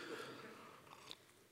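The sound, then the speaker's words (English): Someone takes a quick sip of water, soft mouth and swallowing noises with a couple of small wet clicks, quiet and brief with no talking. “I'm going to go ahead and take a sip of water real quick.”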